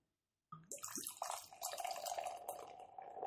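COVID Pills pilsner beer is poured into a glass: after a moment of silence, a steady splashing, gurgling stream starts and keeps running, its tone shifting slightly as the glass fills.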